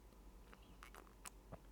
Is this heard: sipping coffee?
yes